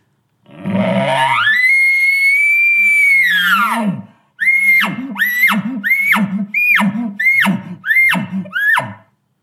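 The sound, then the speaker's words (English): A person imitates an elk bugle the way elk sound where they hunt: one long rising, whistling squeal held for a few seconds and dropping off, then six short, rhythmic chuckling grunts, each with a high squeaky onset. “And that's what the elk sound like where I hunt.”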